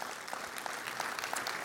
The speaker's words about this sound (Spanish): Súper importante, un aplauso a Dios por ellos.